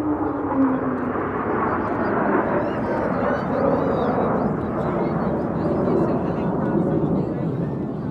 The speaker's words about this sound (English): Fleet Week starts tomorrow, and with it, the annual flyover by the Blue Angels will be wowing crowds and setting off car alarms all around town.